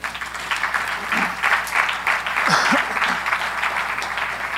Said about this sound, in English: That's a good moment to clap right now.